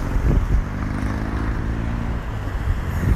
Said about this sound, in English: going around the roundabout, and none of them are using their indicators. So I'm just looking for cars that are coming in my direction, but there's like four lanes of traffic coming in my direction, but they're all not telling me where they're going.